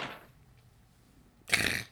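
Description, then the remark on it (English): A short, muffled, stifled burp breaks out near the end, a brief raspy burst after a stretch of quiet with faint low rumble and a soft breathy noise at the start. “I'm choking on a burp.”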